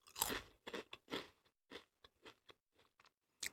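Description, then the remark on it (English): Loud, crisp crunching of crinkle-cut Lay's potato chips being chewed, a burst of bright crackly bites at first, then slower, softer chews in an uneven rhythm with short pauses between. “They're crinkly Lay's.”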